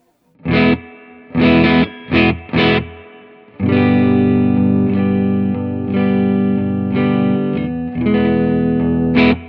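Clean electric guitar with no pedals and a touch of amp reverb: a few short, separate chord strums, then longer ringing chords that sustain and are re-struck, played fairly loud with no talking.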